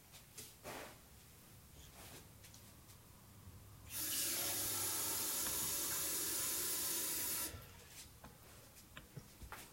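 A tap runs in a steady, even rush for about three and a half seconds, filling a glass with water, with faint clinks and handling noises before and after amid quiet.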